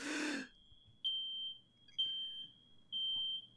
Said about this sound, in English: Is somebody's fire alarm going off? Set off the smoke alarm again?